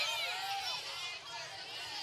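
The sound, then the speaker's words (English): Audience members chat at once with the people next to them, telling each other who they think is the greatest of all time, in a steady, overlapping babble of many voices, with no single speaker standing out, loud and continuous throughout. “Tell a partner, tell someone next to you.”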